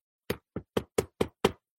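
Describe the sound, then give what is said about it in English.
Six sharp knocks on a door in quick, fairly even succession, close and solid, with no voices around them. “She had to go around knocking on doors.”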